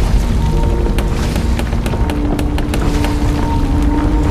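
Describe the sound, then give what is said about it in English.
Heavy wooden church pews in an empty church topple to the ground one after another as Batman leans against them. A rapid, uneven series of sharp crashes and thuds plays over a loud, continuous low rumble, with no voices. “Out of exhaustion, he leaned against the church pews and they fell one by one to the ground.”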